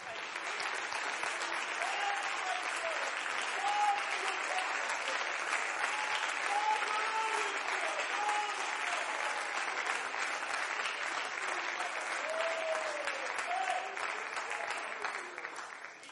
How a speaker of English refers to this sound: Let's just give God a hand clap of praise here.